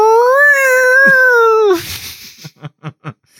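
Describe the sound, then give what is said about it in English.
A car gives off a loud, drawn-out, whale-like moan with a wavering pitch that sags and breaks into a rough rumble, followed by four evenly spaced pulsing chugs. “No, that wasn't a whale. That was actually the car. Yeah, it should not be making that noise.”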